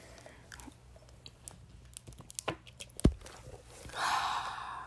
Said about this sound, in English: Trying to get a sip of water, because, yeah.